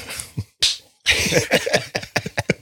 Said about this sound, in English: I make my own sound effects too. That was very good. That was more of a clap than it was a stamp, but yeah.